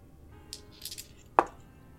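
Dice rolled for a spot hidden check in a tabletop game rattle and skitter across a hard table: a few light, quick clicks, then one sharper knock as they settle, with quiet room tone around them.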